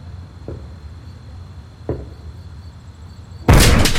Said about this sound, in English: Is that you, Aunt Harriet? Aunt Harriet, if it's you, knock 3 times.